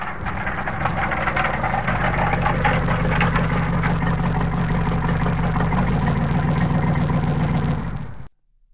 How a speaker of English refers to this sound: You sure we're going to make it with only one engine? Mate, I could bring us in with no engines and half a plane. No worries.